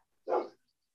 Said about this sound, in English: I'll tell you who's not the quiet one is old doggy over there. Holy cow. Yeah, you hear him? Yeah, dude. He's raising hell. I don't know what the hell he's barking at. You know, something's got him pissed off.